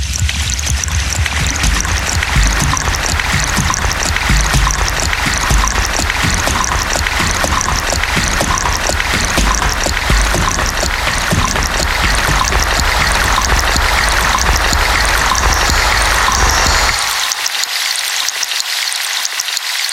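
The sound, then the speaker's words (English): Creek water flows steadily, a dense, continuous rushing and babbling with no voices, the deeper rumble of the flow thinning out just before the end. “I love the dynamic movement of the water from one side to the other, and I feel like it's coming over my head and then swishing around to the side of me.”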